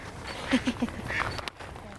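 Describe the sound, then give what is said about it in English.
Three short duck quacks in quick succession, then a higher, fainter call, over steady outdoor background noise at a park pond in an urban area. “It's in a very urban area, and it's very peaceful here, and there's so many wonderful water birds. Quack, quack. Quack.”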